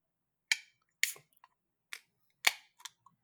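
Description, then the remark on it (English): A can of 11% ABV imperial stout cracking open: a handful of sharp, bright clicks and snaps at uneven intervals, with one louder pop near the end, and no voices. “Delightful right, crack right there.”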